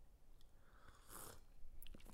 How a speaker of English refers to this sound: Let me just take a quick sip of coffee here.